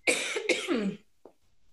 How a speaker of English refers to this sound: I'm just getting over a cold. I'm going to cough. Excuse me.